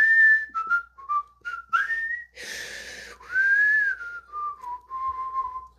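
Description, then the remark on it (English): Someone whistles a meandering tune, a string of clear sustained notes that slide and step between pitches, with a brief breathy burst in the middle and no talking. “Anything you like, said the footman, and began whistling.”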